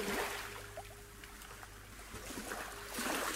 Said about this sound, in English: I never set out to be a geographer, but given that I was born on a boat in the Pacific to white German parents who later moved us onto a small island, there's a kind of poetry to me ending up here, listening to the gurgles and roar of the waves.